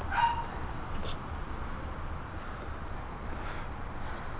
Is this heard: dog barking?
yes